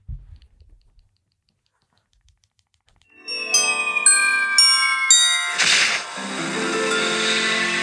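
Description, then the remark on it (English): After a few seconds of near silence, bright ringing bells strike in several quick bursts, then swell into a dense, shimmering wash of jingling tones that holds steady to the end. “Are those bells or is that like...”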